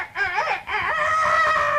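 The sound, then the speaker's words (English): A person crows like a rooster at a band audition as the band kicks in, a loud cock-a-doodle-doo with two rising warbles and then a long drawn-out held note, with no talking around it. “So when they kick in, … crows like a rooster.”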